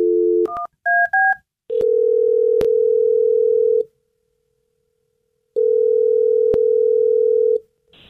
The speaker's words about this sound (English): So okay. It may ring a bit. Okay, here we go. I'm dialing his phone number right now, and good luck.